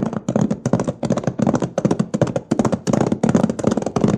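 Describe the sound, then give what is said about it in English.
Horses' hooves clop in a quick, steady rhythm as the horses are urged on and a wagon gets moving, a dense run of hard knocking beats that carries on for several seconds with no one talking. “Come on, let's prod up these horses. Get up there, you!”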